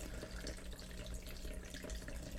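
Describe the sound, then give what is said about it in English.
Wine pours into a cup in a steady, unbroken stream for a couple of seconds, a continuous splashing trickle with no voices over it. “Guys, does this sound like someone peeing when I pour this wine?”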